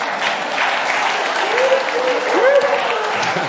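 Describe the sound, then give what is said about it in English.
A crowd applauds steadily, dense clapping filling the whole stretch at a fairly loud, even level, with a few voices and a brief whoop rising over the clapping. “Give a round of applause.”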